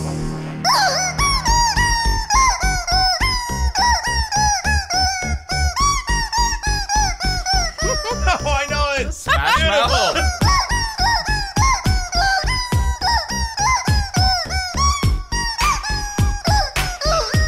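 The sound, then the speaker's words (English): A rubber chicken toy, plucked by hand, squeaks and honks in rapid, rhythmic bursts, played loudly and continuously like a tune, with pitch rising and falling over a steady thumping beat and no voices. “He plucks that rubber chicken like nobody before.”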